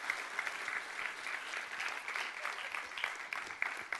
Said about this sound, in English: Give them a great big hand clap today. They did an amazing job.